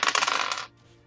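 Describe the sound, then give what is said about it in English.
Dice clatter and rattle across a hard tabletop in a quick, bright burst of small clicks lasting under a second, then stop abruptly; rolled for a dodge skill check in a tabletop role-playing game. Fairly loud, with no talking. “God damn my dice!”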